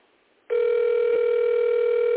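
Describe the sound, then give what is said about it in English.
After a brief hush, a loud, steady electronic phone tone comes in and holds without a break as an outgoing call rings unanswered on the line. No voices are heard. “She's not even answering the phone.”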